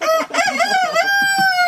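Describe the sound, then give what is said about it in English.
A rooster crows loudly on rural land in Polk County kept with chickens and goats, one long strained cock-a-doodle-doo that holds a high wavering pitch for over a second, with no talking. “Chickens and goats and plenty of space to roam around in the fresh air.”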